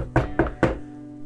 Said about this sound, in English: I use some material to make the sound of knocking.